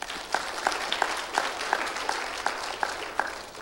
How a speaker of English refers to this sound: Boy, bless your heart. What a sweet, powerful spiritual move and wonderful testimony and confession. Let's give her an applause.